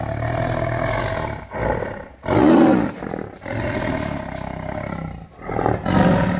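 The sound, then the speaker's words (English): A tiger roars repeatedly, deep and loud, in a series of rumbling, growling bursts with brief pauses between them, unaccompanied by any talking. “That was not the African lion. That was the tiger.”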